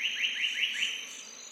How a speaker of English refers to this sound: from the Capertree Valley, in eastern Australia, New South Wales. And here it's 6:21 in the morning, and we're listening to the birds waking up. There's Rufus Whistler, Splendid Fairy Wren, White-Plumed Honeyeater, and Grey Bircher Bird sounding off.